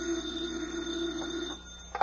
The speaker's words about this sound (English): A short while later, at a nearby FBI field office, Special Agent Jim Taylor is at his desk when the phone rings.